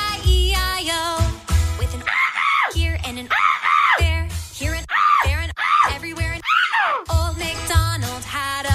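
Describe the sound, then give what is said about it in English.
A person vocally imitates a seagull during an animal sound effect guessing game, with a series of loud, rising-and-falling squawking cries, about a dozen in quick succession, somewhat lowered in pitch, with bursts of other vocal noise at start and end. “Very gender-neutral seagull, I might add. You did try and deepen the seagull slightly.”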